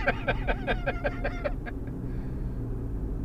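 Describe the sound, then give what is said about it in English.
A large bus rumbles past, its deep engine drone steady throughout, while a quick run of high, rhythmic chirping tones sounds over it for the first second and a half before fading. “We need that big fucker right there, man. That big bus.”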